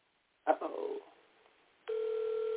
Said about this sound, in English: So let me call. I want to call my God brother, and I'm just going to put him on, because I know he's going to be like, this is why you put me on.